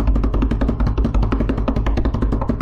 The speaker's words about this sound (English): What's that weird little noise? That was supposed to be, like, applause, eruption of... support from all my boys out there.